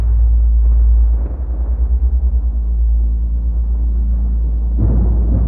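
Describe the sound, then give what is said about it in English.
A loud crack of lightning breaks into deep, rolling thunder that rumbles and pulses for several seconds, then another sharp burst flares up near the end. No voices are heard. “You hear a crack of lightning above you as the wind swirls, coming to a stop.”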